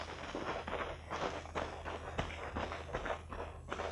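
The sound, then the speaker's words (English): Steady footsteps crunching and rustling through undergrowth in woods, about two steps per second, with a low background hum and no one speaking. “Easy on those footsteps. Walk along the edge of the grass.”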